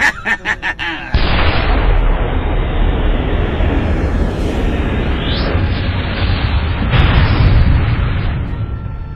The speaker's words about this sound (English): Well, let's see if we can slow him down. Pass me that rocket launcher. I've got him in my sights. Let him have it.